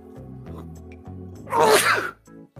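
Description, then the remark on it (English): A single loud sneeze bursts out midway, a sharp breathy explosion with a voiced edge, over soft sustained musical tones that continue before and after it. “So, for safety and other reasons, do not hold in a sneeze.”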